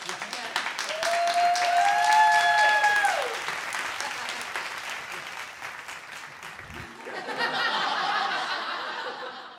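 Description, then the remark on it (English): An audience in the US breaks into a steady round of applause welcoming a guest introduced as Death onto a show, dense clapping throughout with a few whoops and cheers rising over it early on, then the clapping continues at a slightly lower level. “Please, everybody here, give a warm round of applause for Dev!”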